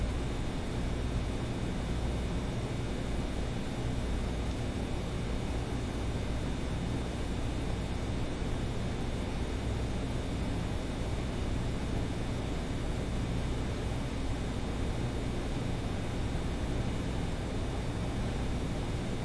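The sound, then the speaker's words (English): A steady, unbroken mechanical hum from an air conditioner, with a broad airy hiss layered over low droning tones, holding an even loudness throughout with no voices or breaks. “Now try to continue to be aware of those sensations and listen to the sound of the air conditioner at the same time.”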